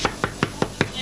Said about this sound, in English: Just when we have an official knock here.